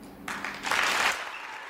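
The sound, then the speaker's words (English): A crowd gives a loud, long standing ovation to an award recipient walking onto the stage, bursting into dense applause that swells quickly, holds as a steady roar of clapping for about a second, then fades back toward a quieter hiss. “He faces a crowd, giving him a loud and long standing ovation.”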